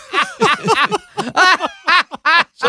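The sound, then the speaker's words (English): A man speaks in a raspy, nasal duck voice, producing about eight quacking, speech-like bursts in quick succession, loud, as if the duck is talking, while moving his fingers like a duck shadow puppet. “Since I was a kid, I've always made this duck.”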